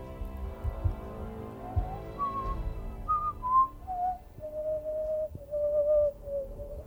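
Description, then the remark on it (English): A person whistles a short melody to finish a passage of an ancient orc war song in a game, stepping through a few notes that drift gradually downward and ending on a long, wavering low tone, with a soft patter of background noise underneath. “And you also recall that the last time you had to finish the passage of the melody.”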